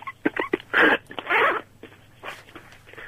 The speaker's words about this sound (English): Doing your zip up there, are you? I'm just getting in the door, actually.